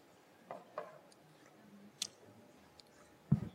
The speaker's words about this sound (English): Let me take a sip.